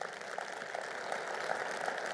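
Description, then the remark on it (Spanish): An audience applauds the Lord, a dense, steady wash of many hands clapping together that holds at an even, moderate level throughout, with no voices breaking through. “Dale un aplauso al Señor por ello.”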